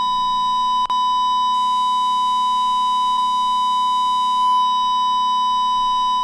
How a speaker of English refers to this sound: This beep is from the, is in the church, not my computer.